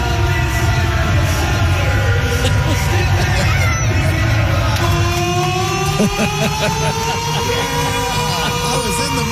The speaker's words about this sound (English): Did you get banned from the siren? Are you going to be able to touch that thing again? The storm horn. Yes, that's what it is. So this is it.